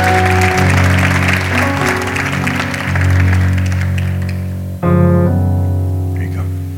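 A church audience claps steadily for a woman being called up to the front, a dense, continuous wash of applause over loud sustained organ-like chords, the clapping thinning out toward the end while the music carries on.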